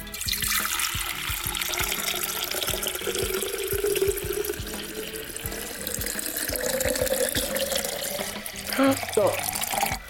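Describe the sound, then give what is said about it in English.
A steady stream of liquid pours continuously into a vessel for several seconds, a broad rushing splash with a faint rising tone as the vessel fills, with brief voices in the background. “are you ready to get pouring? I have the vessels.”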